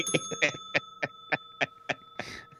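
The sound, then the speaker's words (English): A bell rings in a quick run of about eight sharp, metallic dings, each with a sustained ringing tone lingering underneath, played loud with no talking. “Ring the bell”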